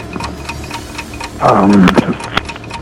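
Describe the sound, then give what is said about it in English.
A game show's 60-second countdown clock ticks steadily, crisp evenly spaced ticks at a brisk pace, briefly joined midway by a louder buzzing, tonal burst before the ticking carries on alone. “Your clock starts now.”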